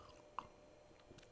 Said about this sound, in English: Okay. It's time to get down to business right after I take a sip from the chalice.